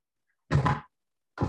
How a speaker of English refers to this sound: Sorry, I knocked something over.